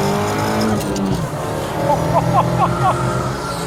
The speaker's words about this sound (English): This week, Volvo P1800 Restomod by Cyan Racing Road Review. There's quite a different character to this car between 5,500 RPM to 7,000 RPM. Second gear, so 4,000 RPM, and then...